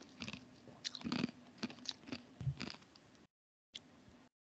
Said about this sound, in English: Pardon the ice chewing.